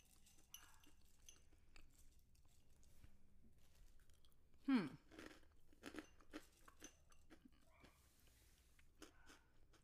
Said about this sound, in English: Oh, that is a big crunch.